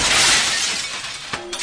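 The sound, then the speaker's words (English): The glass of an office door shatters loudly in a single burst, a bright crash that fades into scattered tinkling fragments, with a couple of small clinks near the end. No voices. “He really should find the key to his office. He's spending a fortune on door glass.”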